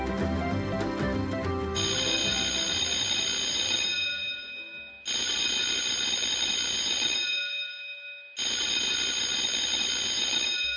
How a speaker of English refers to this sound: That's the third bell. Better get to class.